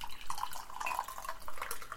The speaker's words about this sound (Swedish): Jag häller upp te så du inte tror att jag kissar.